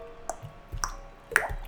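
Water drips in a reverberant wet cave with carved stone walls, three or four distinct plinks at irregular intervals, each ringing with a bright, echoing tail over a low, quiet background.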